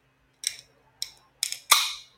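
A drink being opened: three sharp, bright clicks in quick succession, then a louder burst of fizzing hiss that fades over about half a second. No voices are heard.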